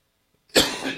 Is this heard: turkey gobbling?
no